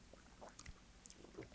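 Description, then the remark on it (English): A faint sip of a cocktail from a small Crown Royal glass: a few soft slurping, wet mouth sounds with a light clink, quiet and brief, and no talking. “Same glass for me. Same thing. Sips.”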